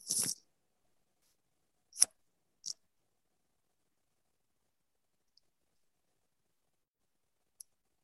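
A brief scraping rustle, then a few sharp, close clicks of a microphone knocking against a jacket zipper, irregularly spaced with quiet gaps and a faint final tick. No one speaks.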